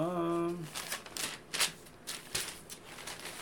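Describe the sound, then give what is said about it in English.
A brief hummed voice, then a paper list is rustled and crinkled in a series of irregular, crisp bursts over a few seconds. “Everybody hear my sound effects? This is my list.”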